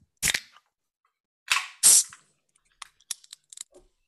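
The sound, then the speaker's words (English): A beer can, holding a hazy beer with a mango and ginger nose, is cracked open: a sharp snap, then two bright bursts of fizzing hiss, followed by a scatter of small, quick clicks and taps. No voices. “And to be fair, straight away on the nose when you open the can, you do get a really strong mango bit.”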